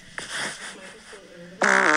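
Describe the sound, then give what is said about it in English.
A brassy, tonal fart with two pitches sounding together like a pair of trumpets in harmony, building from a lower rumble to a loud final blast. “It really did sound like there were two trumpets in there.”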